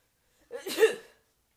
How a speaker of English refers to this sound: Sneeze check. Sneeze.